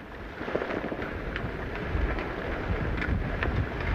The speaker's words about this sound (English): It's lashing with rain. The sea is overcast. The wind has freed off.